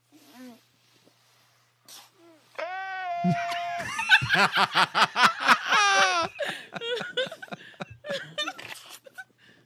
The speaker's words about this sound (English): Oh, yes, and the sneezes. Sneezes.